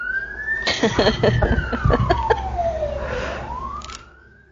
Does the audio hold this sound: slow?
no